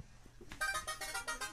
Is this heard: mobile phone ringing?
yes